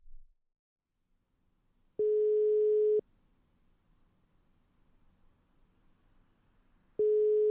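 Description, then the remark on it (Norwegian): A telephone ringback tone on an outgoing call: a steady mid-pitched tone lasting about a second, a long pause of faint line hiss, then the tone starting again. No one speaks. “detta är podcasten Bare Bra som ringer dig.”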